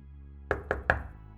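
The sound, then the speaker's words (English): Three firm knocks on a door come in quick, even succession, fairly loud, followed by a brief resonant decay and quiet room tone. “A loud knock on the door startled them both.”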